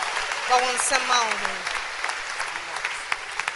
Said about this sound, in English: Clap your hands for yourselves.